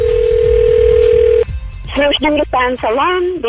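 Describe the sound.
A steady, continuous telephone tone hums for about a second and a half, then cuts off, and a voice comes on the line speaking, answering a prank phone call to a salon about booking a facial.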